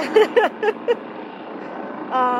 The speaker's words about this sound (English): This fucking helicopter is really upsetting me. Sorry, it's atmospheric.